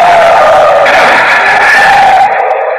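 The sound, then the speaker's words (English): Car tires screech loudly in a long, wavering squeal as a car on a road swerves away from an oncoming car headed straight for it, the harsh skid sustained for a few seconds before cutting off abruptly. “I was lucky I was able to pull away in time.”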